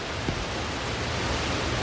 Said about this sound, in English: He slowly walks over to the speaker, turns off the static.